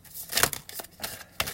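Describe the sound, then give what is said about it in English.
A deck of tarot cards being shuffled: a handful of short, crisp papery riffles and snaps at an uneven pace, fairly quiet, with no voices. “Okay, sorry, we're still shuffling.”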